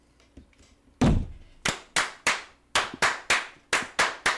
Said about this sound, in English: Why'd you put the cap on? Live dangerously. Because I'm slamming it down on the table. I didn't want water to go all over this expensive hardware.